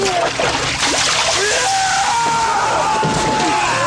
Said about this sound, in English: They splash some holy water up on his face, and it burns, and it's a cool effect, and, you know, he's all scarred from that.